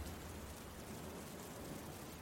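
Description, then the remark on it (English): A steady, dense wash of heavy rain hissing continuously, fairly soft in level, with no breaks, distinct drops, or voices over its short span. “You can hear Margaret call out your name over the rain and water as you are struck, sent flying backwards.”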